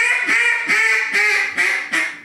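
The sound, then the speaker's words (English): A duck call blown loud, imitating a hen mallard with a steady series of about five raspy, nasal quacks in quick even rhythm, no talking. “Blow the call that way. I want to hear your fine hen mallard.”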